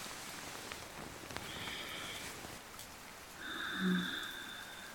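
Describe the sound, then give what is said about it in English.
Steady rain pattering, with scattered individual drops ticking through a soft hiss, while faint sustained tones swell gently in the background. No one speaks. “The raindrops falling.”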